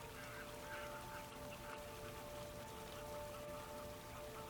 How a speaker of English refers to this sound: A flock of about 8 eider geese chase clumsily off.